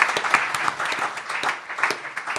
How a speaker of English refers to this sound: I'm not quite sure what he has prepared for your delight, but I'm certain that we won't regret clapping him back into the room. Ladies and gentlemen, Nick Revel.